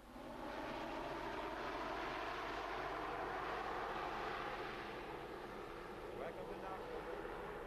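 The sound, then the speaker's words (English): An Aer Lingus Shorts 360 commuter plane's propeller engines drone loudly and steadily as it touches down at Knock Airport, with a rumbling roar that holds for several seconds and muffled voices faintly beneath. “And so on Friday last, October 18th, after 5 years of controversy, the first Aer Lingus plane, a short 360 commuter, was able to touch down at Knock Airport.”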